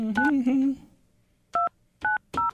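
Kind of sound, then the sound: signal or alarm, telephone keypad dialing tones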